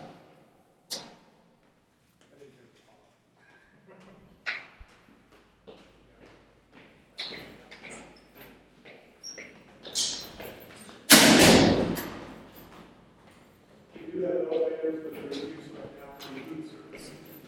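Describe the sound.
A heavy jail door opens with a sudden loud metallic clank and rumble, after scattered taps and shuffling, with faint voices murmuring in the background.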